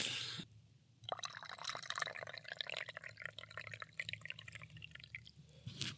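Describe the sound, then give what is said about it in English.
Coffee trickles and splashes steadily into a cup for several seconds, a continuous pouring sound with small dripping textures, no talking. “Just pouring a coffee, not having a pee.”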